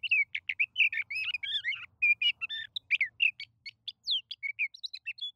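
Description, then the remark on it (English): A male sage thrasher sings a long, unbroken run of rapid warbled phrases, a jumble of high chirps, trills and short whistles that tumble on without pause, with no voices present. “As for the sage thrasher, he's still going strong.”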